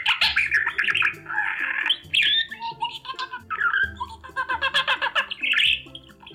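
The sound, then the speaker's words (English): Parakeets chirp and tweet in a busy, continuous stream of bright, rapid calls with occasional harsher squawks, fairly loud, with no voices present. “I also speak parakeets. Why don't you like your new cage? The other birds are too loud.”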